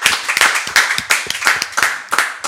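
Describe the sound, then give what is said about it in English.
A short burst of hand clapping for a singer: a steady, quick rhythm of sharp, loud claps from what sounds like a small group, with no talking over it. “Round of applause for ….”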